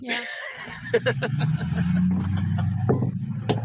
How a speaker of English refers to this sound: Well, you know, you got to like your realtor who shows up in a big-ass diesel truck.